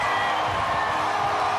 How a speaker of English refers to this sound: Players are going by. The confetti is dropping. Everybody is screaming at the top of their lungs.